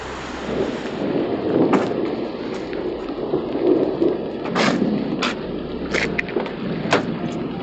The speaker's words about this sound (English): Are you getting some good rain audio? I think so.